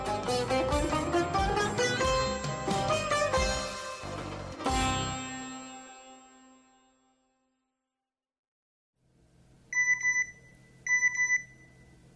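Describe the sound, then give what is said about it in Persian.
After a swell of music fades into silence, a telephone rings twice near the end, two short electronic ring bursts against a faint hiss. No one picks up: it is a mother's unanswered call to her son. “تلاش مادرش برای تماس ناموفق بود.”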